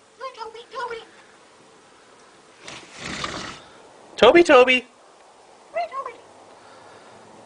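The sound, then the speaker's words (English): A crow named Toby mimics human speech in a few short, raspy, speech-like bursts separated by pauses, the loudest a harsh grating cry near the middle, with a human voice speaking briefly. “This episode's audio clip is of a crow named Toby, and he's talking.”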